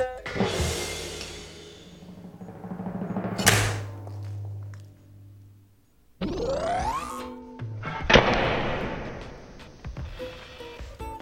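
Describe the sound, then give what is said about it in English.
A champagne bottle's top is sabered off by sliding a sword along the glass bottle until it hits the glass lip: one sharp crack after a hiss-like scrape, then a low ringing hum, followed by rushing, fizzing noise. No one speaks. “What you do is slide the sword along the glass bottle until it hits the glass lip. Do this with enough force and the top should pop off.”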